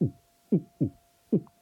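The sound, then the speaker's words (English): A heartbeat sound effect plays alone: low, thumping beats in lub-dub pairs, steady, with a faint constant hum beneath. “And now it's time for the heartbeat props.”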